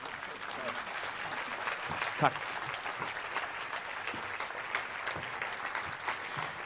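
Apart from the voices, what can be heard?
audience applause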